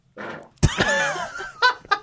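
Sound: fart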